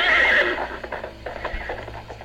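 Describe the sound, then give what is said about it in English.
A horse lets out a loud whinny lasting about half a second, followed by a few softer snorts and shuffling sounds with a low rumble underneath. “Come on, climb onto my horse.”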